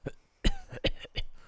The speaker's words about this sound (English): Are you okay? Excuse me, are you okay? Dude, it literally says cough.